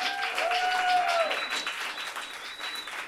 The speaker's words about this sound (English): We'll be bringing four of them up on stage for a conversation later for part two of our program, but I wanted to give them a shout out right now so we can give them a round of appreciative applause.